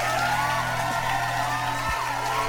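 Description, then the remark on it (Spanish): A crowd cheers and whoops steadily, with shouts and yells over a dense wash of noise, loud and continuous for a couple of seconds with no one speaking. “También un aplauso a mi carnal.”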